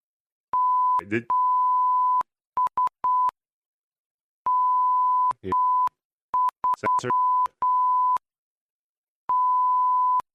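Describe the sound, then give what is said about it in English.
A steady electronic tone beeps on and off repeatedly in uneven bursts, some long and some short, with brief clicks and crackles breaking in between. “I heard a lot of beeps.”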